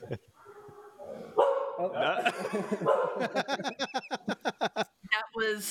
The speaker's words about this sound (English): The neighborhood dogs are in cahoots with you. They started barking right as you asked the question.